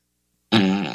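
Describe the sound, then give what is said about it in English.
A loud, buzzy fart sound effect played by an Alexa smart speaker bursts in after half a second of silence and stretches on, its tone sputtering and fluttering toward the end, with no talking. “Bitch, give me a long, lengthy, difficult, squeaky-sounding musketeer on a Hummel fart right now.”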